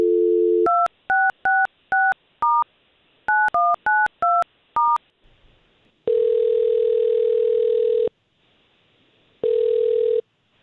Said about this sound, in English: All right. Well, we have her phone number here. Let's see if we can't call her now and we'll talk to her first.